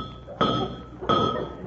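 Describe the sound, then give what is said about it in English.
Two firm knocks by a pirate's knuckles on a door, roughly 0.7 seconds apart, each a sharp thud that rings out briefly over a faint steady background hum. “I'd know his knuckles anywhere.”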